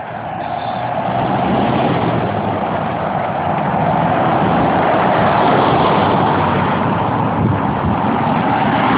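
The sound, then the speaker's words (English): Steady, continuous rumble of road traffic outside, a broad wash of engine and tire noise that stays loud and unbroken throughout with no voices, like vehicles streaming past. “Of course there'd be traffic, just the audio behind it, it's going to be ridiculously invasive while I'm trying to record.”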